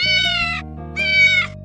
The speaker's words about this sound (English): I think we have heard the cat noise again. I haven't heard a cat noise.